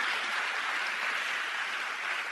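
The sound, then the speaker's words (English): An audience applauds for Jesus during a sermon on prayer, a steady, dense wash of clapping that holds at an even level throughout, with no voices heard over it. “And I know, sorry, let's give Jesus a big hand. If you want to clap, you would clap 200%.”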